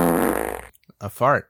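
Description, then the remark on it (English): A loud, drawn-out buzzy fart sound lasting under a second, sputtering slightly as it fades, followed by a short pause and a few spoken syllables. “A fart. A big fat one of these.”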